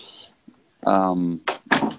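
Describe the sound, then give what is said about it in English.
An office door swings shut: a brief creak, then a couple of quick thumps as it latches, with a voice murmuring briefly in the middle. “I'm just going to close my office door here as we go forward.”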